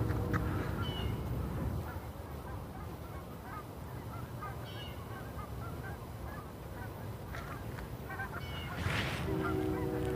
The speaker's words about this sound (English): Oh, I hear geese.